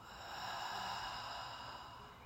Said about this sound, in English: Starting to take some deep, full breaths here together, all the way in through the nose and out the mouth, release. Beautiful, a few more in through the nose. Let it go.